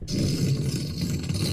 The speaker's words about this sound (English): That's a deflate. That sounds like a terrible fart. Or something like screaming. This one is horrible. I gotta find a better one.